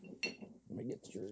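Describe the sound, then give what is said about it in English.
A single bright, ringing clink of glass rings out early as drinks are poured, and people talk over the rest of the short moment with soft clattering in the background. “I'm pouring up your number 1. You pour up my number 1.”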